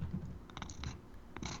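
A large cat sitting beside a person at a kitchen table purrs close to the microphone, a soft low rumble running throughout, broken by a few brief scratchy rustles. No one speaks.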